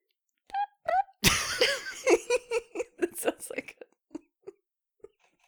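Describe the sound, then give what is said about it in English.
A voice makes two brief, squeaky chirping noises mimicking a cricket, then dissolves into loud, breathy laughter with a series of short giggles trailing off. “Attempting to make a cricket sound.”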